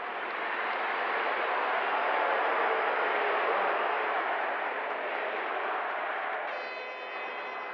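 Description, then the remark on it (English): A large crowd lets out a loud, sustained roar of booing at New York Governor Rockefeller after his speech challenging Republicans to repudiate extremism and racism, a dense wash of voices holding steady for several seconds, then chanting "We want Barry." “You can hear the crowd at the end booing him, but then also chanting, "We want Barry."”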